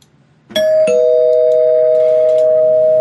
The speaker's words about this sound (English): So what I want to discuss is going to require a ringing of the spoiler bell. So spoiler bell incoming in 3, 2, 1.